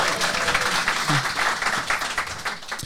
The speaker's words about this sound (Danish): Der er altså ikke lige så stor bifald nede på Beach nu, som jeg smider så, men det er jo en anden ting.